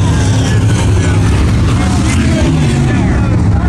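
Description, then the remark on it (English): Loud, continuous roar of race car engines, with whining tones rising and falling as the cars speed by, the din steady throughout. “The seven car gets around.”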